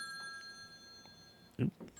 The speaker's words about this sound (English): Sorry about that. I forgot to turn the phone off.